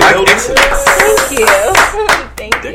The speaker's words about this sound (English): Shit, let's clap it up for that.